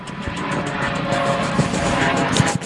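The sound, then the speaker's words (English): A helicopter roars steadily, its broad engine noise pulsing with a fast rhythmic chop from the rotor blades throughout. “Again with these helicopters. I've got a helicopter.”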